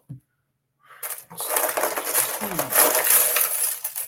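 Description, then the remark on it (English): Dice and small plastic dragon figures clatter into a container, a dense rattling cascade of hard little pieces lasting a few seconds, fairly loud with no voices. “Oh, let me put the dragons and the dice back in there.”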